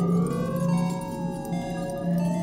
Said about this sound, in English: Whirled through the vortex of spinning lights and roaring sound, Tane loses consciousness to awaken in a strange world.